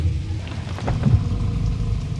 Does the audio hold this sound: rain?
yes